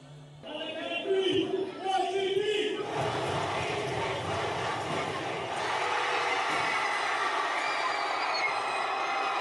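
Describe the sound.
A large crowd of school students from the freshman, sophomore and junior classes, decked out in their class colors, shouts class cheers together, voices rising in loud, overlapping yells before blending into a steady roar of cheering that carries to the end.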